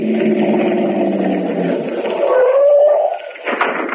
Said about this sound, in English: Lucky it's late and there's no traffic. Car parked up ahead. Hit the lights and get in behind.